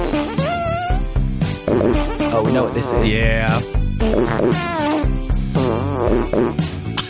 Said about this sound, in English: This fart really butters my egg roll. It's worth 10 points.